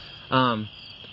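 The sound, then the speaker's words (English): A steady, high-pitched chorus of crickets chirping outdoors at night runs through the whole moment, briefly overlapped by a short, loud voiced sound near the start. “And you can hear the crickets like crazy.”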